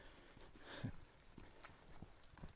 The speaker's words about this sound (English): You wouldn't tell that actually it was just a horse passing us by, because I'm walking on a sandy path, and so the footsteps of the horse gets attenuated by the sand, so it's super silent.